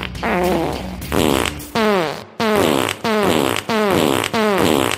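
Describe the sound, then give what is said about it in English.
A rapid series of loud fart sounds plays as a theme jingle for a segment called Brain Farts, each burst rising and falling in pitch in a bouncy, repeated rhythm, with no talking. “And so again, we'll play the two competing theme songs for this segment.”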